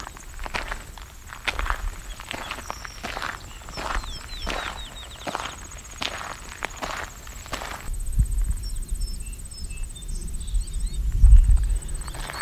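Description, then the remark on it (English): Thin, high-pitched, slightly whiny goldfinch calls come in short bursts over steady crunching footsteps, which stay louder throughout. “It's a goldfinch call. Very high pitched, a little bit whiny.”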